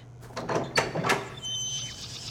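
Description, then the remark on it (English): A door in a diner slides open with a scraping, rattling rush over about a second, followed by a faint high whine and low hum. “I am not going through a door in a diner that leads to a fucking forest.”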